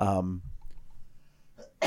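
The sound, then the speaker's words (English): A voiced vocal sound opens, followed by a quiet pause and then a sharp, loud burst at the end, like an abrupt cough picked up by the microphone. “Oh, the cough button didn't work.”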